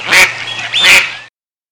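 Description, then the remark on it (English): Two loud, nasal duck quacks sound, a brief pause separating them, followed by silence. No voices are present. “In other words, if the individual that you claim to be an independent contractor really truly looks, walks, talks, and sounds like a duck, it's a duck.”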